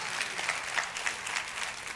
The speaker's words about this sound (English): Come on, somebody give the Lord a clap offering.